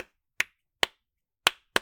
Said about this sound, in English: Those claps were weak. I was trying to not blow out the microphone.